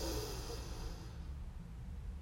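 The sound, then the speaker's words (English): A long, airy inhale drawn in through the nose, hissing steadily for about a second before fading into a quiet, low background hum. Fairly soft, with no talking. “Take it in through the nose.”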